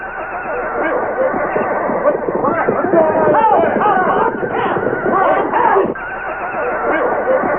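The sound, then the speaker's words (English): Toward dawn at a camp, a crowd of horses neighing and whinnying in a chaotic, overlapping din, loud, with shrill rising and falling whinnies that peak midway and continue without a break. “Then along toward dawn, there was an uproar of noise from the horses.”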